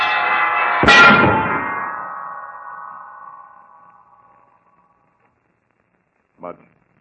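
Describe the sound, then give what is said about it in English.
A big bell rings out, then the heavy center bell of a bell tower falls and strikes with a crashing thud, and the deep metallic tone hums on, slowly fading over several seconds before a brief short sound near the end. “Holmes, the center bell, the big one is falling.”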